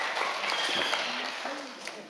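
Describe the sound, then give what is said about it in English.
A crowd applauds steadily for about two seconds as 12 people are getting baptized, a dense, even wash of many hands clapping at once, with a few voices calling out underneath. “Okay, now you can clap.”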